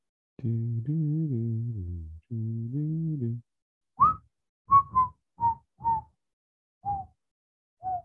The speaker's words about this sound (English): Pretty good whistle.